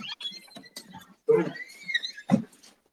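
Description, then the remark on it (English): Two big dogs scuffle in a garage at a friend's house, one antagonizing the other, letting out high, thin whines and squeals mixed with short yelping bursts and scrabbling thumps. The noise comes in uneven, fairly loud spurts with no talking. “Just the dogs are just my buddy's house here in the garage. Two big dogs that both my mind's being a little obnoxious.”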